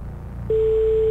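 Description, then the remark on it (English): An old Norwegian telephone ringing tone: a single steady, mid-pitched beep starts partway through and holds loud and unbroken to the end over a low background rumble. No one speaks. “That's just the old Norwegian ring.”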